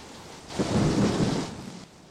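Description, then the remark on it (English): A deep rumble of thunder swells and fades over a steady hiss of falling rain, from a storm hitting a ship at sea, with no voices present. “A storm had hit the ship.”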